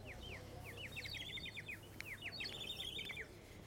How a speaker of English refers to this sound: And here's me thinking that there were tons of birds about. Nope, it's just some guy selling one of those bird toy things. It makes bird noises. Thanks for serenading me.